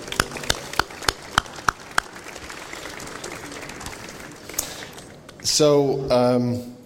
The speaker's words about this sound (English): I just want to congratulate the TMP team here for putting this new venture competition together. I mean, it's awesome. It really is. I think we should give them a great applause.